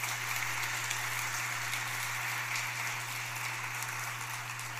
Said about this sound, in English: And I just want to say thank you to them, if you'll give them a round of applause.